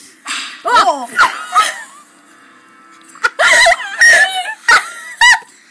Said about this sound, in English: Oh! Why does he have a whip? It's so loud! Oh my gosh, why is that? It sounds like they just edited it. Why did they make the sound effect for the whip so much louder than everything else?